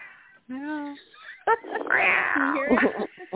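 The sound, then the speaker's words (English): A 27-pound male Maine Coon cat meows loudly and plaintively, wanting affection: one drawn-out cry followed by a longer, wavering yowl, with a voice murmuring faintly in the background. “In fact, I've got a okay. cat right now crying for me. I heard oh. him. Can you hear him?”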